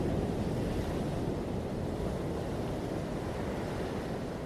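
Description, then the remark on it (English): Calm, warm ocean waves wash steadily over cool, wet sand on a sunny beach in a continuous, soft roar, even in loudness, with no voices and no distinct breaks between swells. “The rhythm of the calm waves flow over the sand and it relaxes you.”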